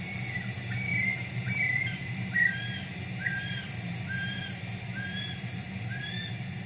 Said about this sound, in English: the male of a kiwi has a higher call